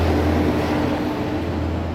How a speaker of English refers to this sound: Also utility time. That was electric going by, wasn't it? Yeah. Everybody got their power on? Yeah. I never thought trucks were that loud. They always seem louder when you're on some sort of broadcast, though, don't they?